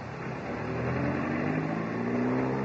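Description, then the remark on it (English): A car engine revs up and accelerates steadily in heavy traffic, its pitch climbing over a dense, continuous rumble of road noise. The sound is fairly loud, with no voices. “By Timothy, this traffic really is appalling. Relax, darling. I don't mind driving.”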